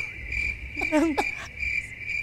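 A crickets sound effect played from a button: crickets chirp in a steady, continuous trill from start to finish, clear, with a brief warbling call rising over them partway through and no talking.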